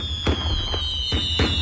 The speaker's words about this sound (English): Here's some fireworks, Arizona.